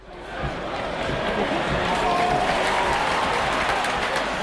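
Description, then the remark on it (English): A large stadium crowd of football supporters roars and cheers continuously, a dense wash of many voices with clapping, steady and loud throughout without letting up. “That's a crowd of supporters for either football or a sport game.”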